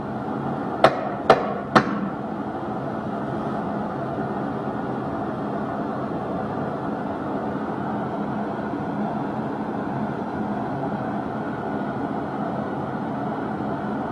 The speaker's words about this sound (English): So I'm going to knock three times, and I want to see if anybody can copy me. Here I go.